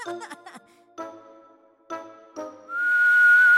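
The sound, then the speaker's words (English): A steady, slightly rising whistle with a breathy hiss, from outside, comes in near the end, held for about a second, after a few short ringing, bell-like tones. “A low whistle outside recalled him to the window.”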